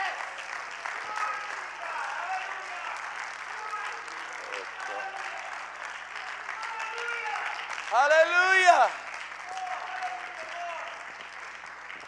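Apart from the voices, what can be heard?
audience clapping hands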